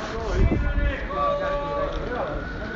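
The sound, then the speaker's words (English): Busy outdoor street ambience outside the main post office in Cork, Ireland: a steady low rumble of traffic with indistinct voices chattering, and a brief thump of movement early on, all at a moderate, constant level. “I'm outside the main post office.”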